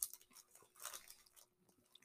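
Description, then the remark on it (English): Crisp chewing of crunchy chocolate candy, a series of crackly bites and mouth sounds with a louder burst of crunching midway, no talking. “Good amount of crunch.”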